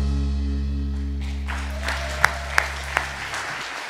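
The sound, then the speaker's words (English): Audience applause builds as a sustained low musical chord fades out and a speaker comes on stage, a steady wash of clapping with a few sharp, louder claps standing out near the end. “I always wanted you to clap for me when I was coming on stage, so I feel like that's actually just what happened.”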